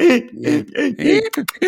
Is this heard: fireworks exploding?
no